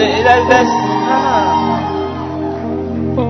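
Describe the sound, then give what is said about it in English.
A large crowd shouts and cheers together in a loud, sustained roar of many overlapping voices, holding steady for a few seconds with no break. “If you are shouting, shout.”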